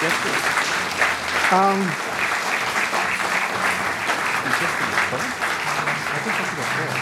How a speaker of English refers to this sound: Please give them a round of applause as they arrive on the stage.